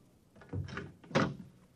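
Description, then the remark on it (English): A door in a deserted skyscraper, marked Andrew C. Rednick, public analyst, opens with a latch click and a solid wooden clunk a moment later. The two short sounds stand alone against the quiet. “Suddenly, I was in front of a door that read, Andrew C.”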